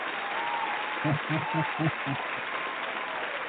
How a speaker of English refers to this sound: Well, let's give everyone an applause that have supported you in all the years.